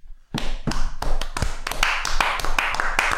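Hands clap in a steady rhythm, about three sharp claps per second, picking up slightly and growing denser toward the end, with no talking over them.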